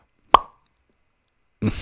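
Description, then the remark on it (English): A voice imitates a toaster popping up with one sharp, short mouth pop that quickly fades into silence; a moment later someone starts to speak. “I don't know why I just made that sound, but I can't make a toaster sound right now.”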